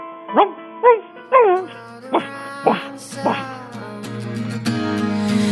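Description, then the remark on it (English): A person imitates a dog with about six short, yelping barks spaced roughly half a second apart, fairly loud, while a steady buzzing drone rises underneath and swells toward the end. “Bark for me, bark. Go on, bark like a dog, bitch.”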